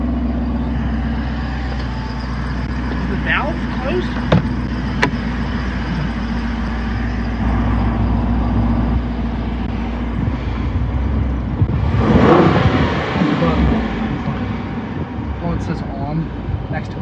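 A 392 car engine with a stock active exhaust starts and rumbles steadily with a deep exhaust tone, then surges into a loud, brief rev about two-thirds of the way through before settling back to idle.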